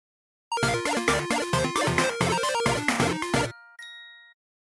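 A loud, busy electronic jingle of rapid repeated chords plays for about three seconds as a phone notification alert that SNES Classic Edition pre-orders went up on BestBuy.com, then a single clear chime rings out and fades. No one speaks.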